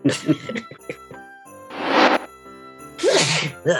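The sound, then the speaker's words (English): A man sneezes loudly, a breathy burst followed by a second forceful sneeze, after a moment of brief vocal sounds. “one of the guys sneezes”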